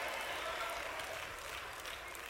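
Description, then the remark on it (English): An audience claps steadily, a dense crackle of many hands with no break for the whole stretch. It stays fairly soft and even, and no voice can be heard over it. “You clapping, but let's stop talking.”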